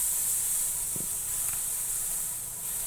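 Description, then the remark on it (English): Aerosol cooking spray hisses steadily into a pan for about three seconds, a bright, continuous spray with a faint knock partway through and no talking. “I'm gonna throw a little spray in there.”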